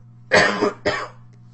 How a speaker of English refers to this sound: I'm on an antibiotic right now. I also have a bit of cough.